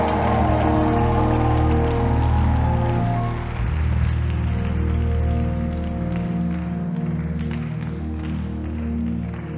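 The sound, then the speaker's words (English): A church audience, urged by a preacher, claps and screams together in a loud, continuous roar, with sustained shouting voices layered over dense, steady clapping for the whole stretch without a pause. “Come and clap your hands and scream like your voice is yours.”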